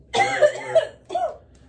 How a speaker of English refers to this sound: is coughing again.